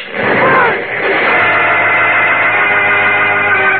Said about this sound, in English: Clark Kent's X-ray vision perceives the explosive in the receiver and he leaps forward. A deafening explosion rocks the room.